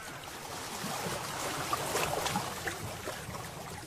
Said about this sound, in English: I'm on the lake. The lake? I take a boat out and drift.